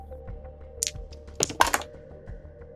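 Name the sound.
typing on a keyboard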